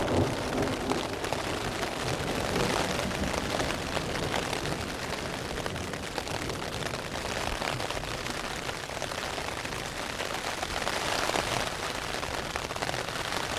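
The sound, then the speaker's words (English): Heavy rain and hail drum steadily on a tent overhead, a dense, continuous patter of countless impacts, with a low rumble of thunder in the background. “So you're hearing the sound of rain and hail hitting my tent. There's obviously thunder going off in the background.”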